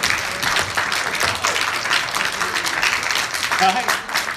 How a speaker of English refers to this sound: So, I would like to just say this, okay? I would like you to give your neighbor a nice round of applause for making it this far, huh?